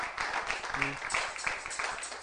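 A crowd claps steadily for a couple of seconds, a dense, rapid patter of many hands, with a brief voice cutting through partway; the audience is clapping for themselves.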